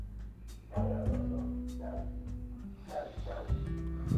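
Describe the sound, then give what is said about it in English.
A dog barks and whimpers in the background at a dog sitting across the street, with several short yelping bursts spread over a few seconds above a steady low hum. “you guys can hear Coco in the background. She sees a dog across the street”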